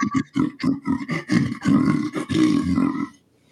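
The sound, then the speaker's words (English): A human voice imitates a lion's roar into a metal waste bin: a string of short, gravelly growls builds into a longer, loud, resonant roar with a hollow metallic ring, then stops abruptly. “It's that's how they did all the lion roars in Lion King. They had a metal waste bin, bucket, right.”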